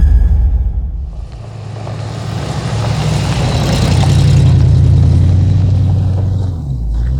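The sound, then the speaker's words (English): A car engine roars loudly and steadily as the driver presses the gas, its pitch climbing as it revs and accelerates for several seconds before easing off slightly near the end, with no voices present. “Whoa, dude, you're pressing the gas”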